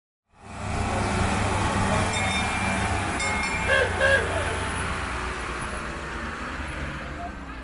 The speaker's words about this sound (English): All aboard. We're on the little train that goes from Jerusalem's Jaffa Gate and weaves through the sacred old city down to the Western Wall to pray.